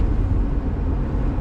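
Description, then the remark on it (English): Steady, heavy road rumble fills the cabin of a moving truck, a constant low drone with a hiss of tire and wind noise on top and no voices. “And maybe sometimes I'll have some guests on that will be my passengers, whoever's in the truck with me.”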